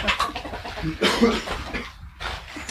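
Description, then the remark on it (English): Chickens under a shed cluck in a busy, uneven chatter of short calls, steady over the whole stretch with no one speaking. “Oh, we got chickens under there.”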